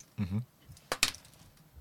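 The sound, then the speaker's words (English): A short voiced hum, then dice land with two sharp, hard clacks in quick succession, followed by a faint rattling tail as they settle on a hard surface. “I'll even throw it off this.”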